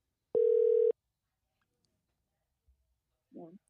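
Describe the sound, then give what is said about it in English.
A single steady electronic ringback tone from an outgoing phone call sounds clearly for about half a second, then a faint click and a brief voice come in. “All right, let's see if she'll answer.”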